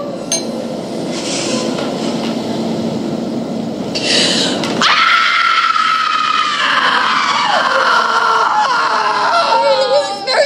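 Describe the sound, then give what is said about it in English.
A woman screams loudly and at length, a sustained high-pitched wail that wavers and steps downward, breaking out abruptly after a few seconds of noisy, murmuring background. “I did scream. Want to hear?”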